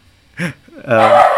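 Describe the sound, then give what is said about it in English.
A dog gives a short, sharp bark, then after a brief pause lets out a louder, drawn-out bark or yowl. “God damn it, stop barking.”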